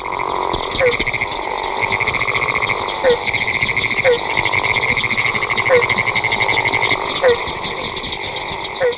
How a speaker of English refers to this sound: Closely related to the leopard frog and with a similar but still distinctive voice is a Florida gopher frog, Rana Capito. Its snore-like call is heard here in chorus with a barking tree frog and the pinewoods tree frog.